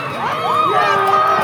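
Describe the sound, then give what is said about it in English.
A crowd cheers loudly and steadily, many voices blending into a sustained roar with rising and falling shouts over about a second and a half, as neighborhoods in Minnesota celebrate on April 20th after the jury found Derek Chauvin guilty in the murder of George Floyd. “Neighborhoods erupted in cheers and honking horns.”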